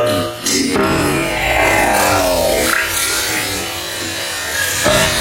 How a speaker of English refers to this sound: Bang! That's the sound of it sloshing in the bowl there. Dirtying the water, mashed potato and water in the sink, no washing up liquid left.